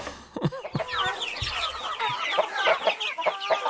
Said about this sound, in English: All right, let me play you a couple sounds here, or clips of sound. Yeah. And you tell me whether these chickens are happy or exasperated.